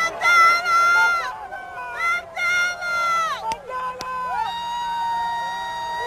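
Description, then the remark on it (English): A large crowd in New York cheers and shouts for Nelson Mandela in long, sustained bursts of many voices, their pitch swooping down and up between waves, loud and continuous for several seconds. “It was quite a big crowd.”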